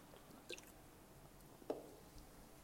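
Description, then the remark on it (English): Someone takes a quiet sip of water, with two soft, wet swallowing sounds about a second apart against near silence. “So today was really busy, and now that I'm talking about water, I'm just going to have a drink.”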